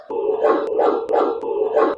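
A dog barks and yaps in a rapid, nearly continuous string of calls that rise and fall in four or so bursts, fairly loud, with no one talking.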